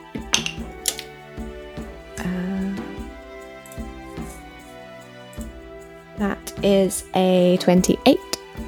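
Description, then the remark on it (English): Dice rattle and clack inside a cup in a series of quick clicking bursts, shaken for a deception check, heard over a steady musical background with brief vocal sounds near the end. “Has a cup dice.”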